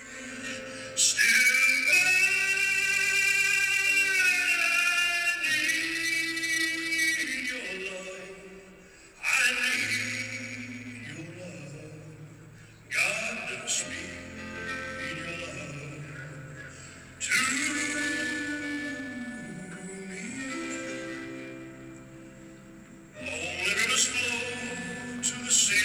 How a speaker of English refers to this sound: I'll put my phone up to the microphone so you can hear what … sounds like at the piano.